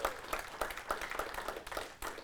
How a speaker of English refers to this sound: And so first of all, I want to just applaud, have you guys applaud for them, because that's a commitment.